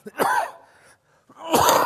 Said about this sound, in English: Excuse me. Sorry about the coughing today. It's been rough. But I'm getting through this, so amen.